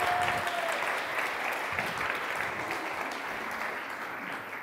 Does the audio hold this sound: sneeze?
no